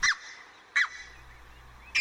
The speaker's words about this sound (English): It's today's featured feathered friend, Branta rufocollis, the red-breasted goose.